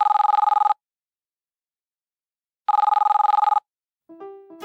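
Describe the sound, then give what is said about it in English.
A telephone ring-back tone as a call is placed to a man's voicemail, sounding twice, each burst a rapid warbling ring lasting under a second with a long silent gap between, followed by the start of a short tonal beep sequence. “So this is the voicemail message for Eddie Pennington. Let's give him a call.”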